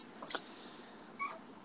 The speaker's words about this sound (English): But he still meows at me like a baby because meowing is a baby instinct. Cats in the wild, they don't do this sound to each other. It's his childish instinct to meow at me.